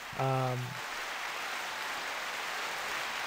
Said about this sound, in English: But let's just get some hand claps for Allan today, because he won't be able to hear the hand claps, but he will in post.